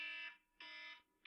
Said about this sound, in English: Oh, so that's Brian's alarm, okay. I thought that was, was Andy's, and it just, like, he had it set to the wrong time or something.